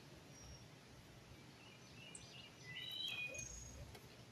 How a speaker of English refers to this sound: And do y'all hear these birds out here? My wife can tell you what bird they are. What bird was that? I think it was a mockingbird. Well, I'm not real sure.